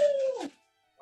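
A dog lets out a short, tonal howl that slides downward, followed after a brief pause by a single quick bark, fairly clear with no talking.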